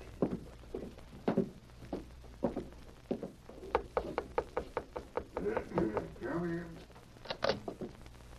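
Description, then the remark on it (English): Footsteps approach across a hard floor, followed by a run of sharp knocks on a wooden door at the back of a bank, moderately loud, with a brief creak before a final pair of taps. “Just knock on that door back there.”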